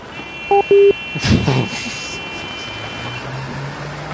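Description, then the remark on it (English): Two short, loud horn beeps sound over a steady roar of traffic, followed by a burst of passing-vehicle noise and a low engine drone that continues in the background. “Just loud traffic and beeping.”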